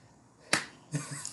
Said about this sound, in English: That's a slow clap. That's me doing a slow clap for you.